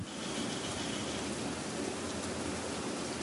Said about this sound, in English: So take a moment to still your heart. Listen to the patter of the rain.